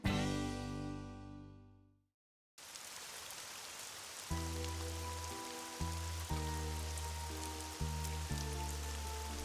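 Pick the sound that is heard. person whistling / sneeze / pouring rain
pouring rain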